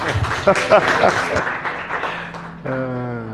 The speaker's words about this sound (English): And I think that in itself, actually, I think deserves a round of applause. Okay, we'll do that in a second.